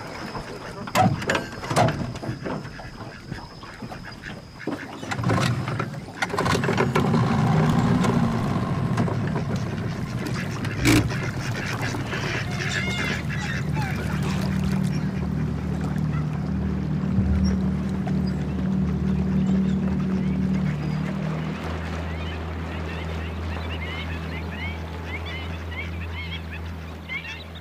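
A boat glides steadily along a waterway with a low, continuous drone and wash, while geese or other waterfowl honk and cry; a few sharp knocks sound near the start.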